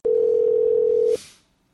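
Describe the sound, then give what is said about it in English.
A single steady electronic telephone ring tone sounds for about a second, loud, then cuts off into a brief soft hiss, like a line ringing before someone picks up. “Or a phone ringing or Wake something up.”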